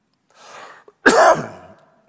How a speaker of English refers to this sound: It's not COVID, by the way. It's just a cough. Unfortunately, I have had it for 3 weeks.